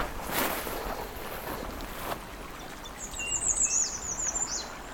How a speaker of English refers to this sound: Some American red starts.